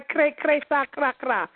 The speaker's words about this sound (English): Whoever got that squeaking going on, it might be my son, whoever it is, please mute your phone.